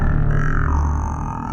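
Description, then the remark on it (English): A person voices a low, guttural growl, loud, held steadily for a second and a half with a rough, rumbling texture and no words. “Suddenly a low guttural sound comes from this shadow.”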